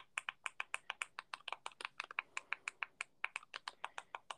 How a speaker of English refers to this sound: I hate typing on a TV. You have a Roku TV, right? Yeah. Yeah, I fucking hate this.